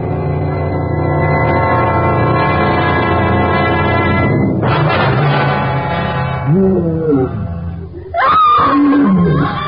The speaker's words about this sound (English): The roar of a wild beast and the scream of a woman.